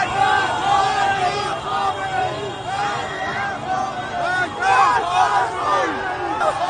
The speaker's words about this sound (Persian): جمعیت ناگهان صدای فریادش بلند می شود و به سمت خیابان اصلی حرکت می کند.